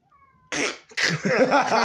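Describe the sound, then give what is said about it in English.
A black cat meows loudly, a short harsh yowl followed after a brief pause by a longer, wavering, drawn-out cry, with no talking. “if he goes on for too much longer, I'm going to like pause this and just kill the cat”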